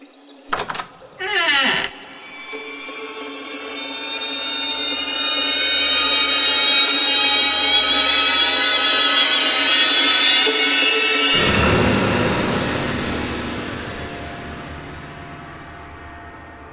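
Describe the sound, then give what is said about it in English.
A couple of sharp clunks, then a long, loud, grinding creak that drags on for several seconds as heavy double doors are pushed open, before giving way to a rumbling boom that slowly fades away. “And Baston is going to walk to the double doors at the far side of the room and attempt to push them open.”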